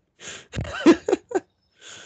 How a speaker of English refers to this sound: I'm sorry for all the sniffles and deep nose stuff. People, that sounds weird, but yeah, deep nose noises.